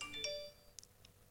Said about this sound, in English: Sorry, that was very unprofessional of me. My phone went off.